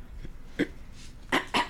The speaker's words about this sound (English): Clear your throat. Take a sip.